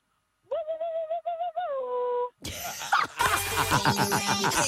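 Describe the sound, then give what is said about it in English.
A person makes a sustained, wavering, high-pitched mouth noise, like calling to a bird, for about two seconds, followed by a burst of loud, rough, noisy sound. “You sound like you're calling a bird.”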